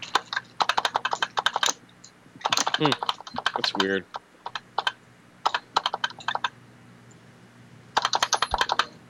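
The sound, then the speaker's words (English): Rapid clickety-clack computer keyboard typing during a Skype call, in quick bursts with short pauses, crisp and fairly loud, while a voice briefly speaks partway through. “Hey guys, whoever's in Skype doing clickety clackety.”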